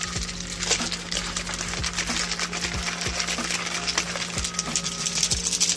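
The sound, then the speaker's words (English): A drink mixer bottle holding Dragonade energy drink powder and water is shaken hard and steadily, its contents sloshing and rattling in a fast, continuous clatter, with no one speaking. “We got a little mixer here.”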